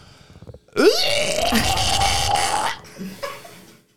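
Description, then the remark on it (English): A person imitates a dinosaur with a long, loud, rasping roar that rises sharply in pitch, holds steady for about two seconds, then trails off into a softer growl. “What kind of noises did dinosaurs make? Let me hear them.”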